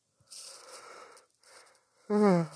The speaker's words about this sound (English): I keep yawning because I haven't smoked today. Keep yawning during the podcast.